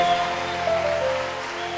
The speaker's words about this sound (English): I know you're not clapping better for the Lord, but we can try.